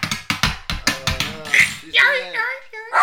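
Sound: pounding on a table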